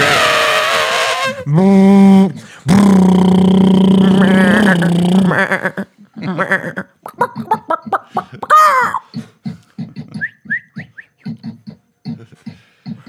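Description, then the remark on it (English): A voice imitates an elephant's trumpet in loud, harsh, sustained blasts with a brassy, wavering pitch, then breaks into choppy, breathy laughter in short rhythmic bursts. “Ooh, I can do the elephant.”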